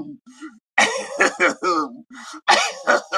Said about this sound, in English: you know when you do that, let me clear my throat. Some disrespectful shit about to happen.